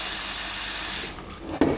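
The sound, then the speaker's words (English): Tap water pours in a steady, hissing stream into a plant pot holding a plant in bark, filling it until the water is about halfway up the side of the pot, then tapers off and thins out, followed by a short, sharp knock or splash at the end. “All I'm going to do is just fill the whole thing with water from my tap till the plant's probably about halfway up the side of the pot.”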